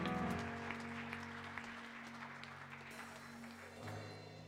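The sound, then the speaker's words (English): A crowd claps steadily for several seconds, told to clap their hands and pretend they are tithing, a dense patter of many hands over a sustained low musical tone from an organ or keyboard. “Just clap your hands and pretend like you're tithing.”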